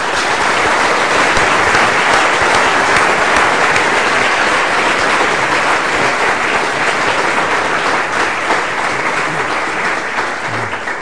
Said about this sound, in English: can I invite you to give him a very warm round of applause for this.